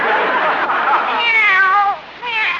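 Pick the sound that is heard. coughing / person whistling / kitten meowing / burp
kitten meowing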